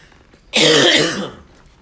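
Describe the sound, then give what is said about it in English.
A sudden loud, raspy throat clearing that breaks into a cough, one harsh burst lasting under a second before trailing off into quiet, with no talking. “Excuse me.”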